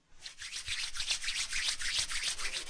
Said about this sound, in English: Rub your hands together. Feel the friction generated by your hands rubbing together. Like electricity crackling.